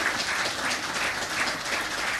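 A crowd applauds steadily for a musician who played for them in the morning. A dense wash of many hands clap at once with no pauses, holding an even level for the couple of seconds heard.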